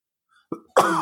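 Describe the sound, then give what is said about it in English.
A person coughs: a short throaty burst, then a louder, harsher cough lasting about a third of a second, with no talking. “Sorry, I'm going to cough a lot now, apparently.”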